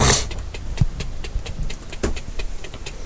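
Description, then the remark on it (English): Steady mechanical ticking, a rapid, even series of sharp clicks with a few louder ones, coming from a metal cage in the middle of a hold, heard over a continuous low rumbling background. “Yeah, notice to try to find the ticking.”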